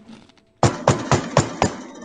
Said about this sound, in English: Like, really loud. She won't give up. And I already know. Goddamn. I know which bitch that is because I know how she fucking knocks.